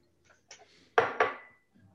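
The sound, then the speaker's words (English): Someone takes a quick sip of water: faint soft handling noises, then two sharp clinks of a glass or bottle about a quarter second apart, fading away. No one speaks. “I'm going to take a sip of water first.”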